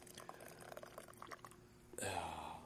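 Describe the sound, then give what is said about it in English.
Light clinks and handling noises, then hot coffee suddenly starts pouring from a small Japanese thermos into a cup in a steady, rushing stream that continues to the end. “And I've just, God, I should have held the mic closer for, you could hear it being poured.”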